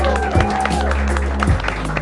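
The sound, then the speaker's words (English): An audience at a live trivia event applauds the participating teams in a steady, continuous wash of clapping, with a low hum underneath and crowd voices mixed into the noise throughout. “And then can we also get a big round of applause”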